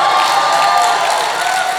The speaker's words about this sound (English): Half of the people clapping don't even know why they're clapping. I just yelled and they're just going in.